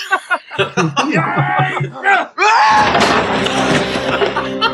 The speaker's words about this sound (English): Was that the Wilhelm scream?